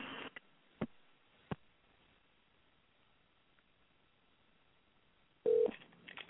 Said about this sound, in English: Yeah, it just went straight to dial tone. I don't know what happened. All right, let's try this again. Take two, but we're on a wire line. So it was not a cellular problem.